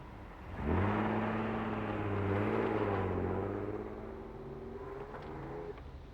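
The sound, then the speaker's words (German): A police car standing in front of a house, with two uniformed officers getting in, starts its engine and revs as it pulls away, its steady hum fading slightly as it drives off. No voices. “Ein Polizeiwagen stand vor dem Haus. Zwei Uniformierte stiegen gerade ein und der Wagen fuhr ab.”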